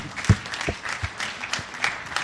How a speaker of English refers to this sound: So thank you guys so much for all that you've done, and you can give yourselves a hand for that too. I know that's kind of weird, but I'm clapping.